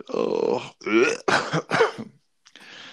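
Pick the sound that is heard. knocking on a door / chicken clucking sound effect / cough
cough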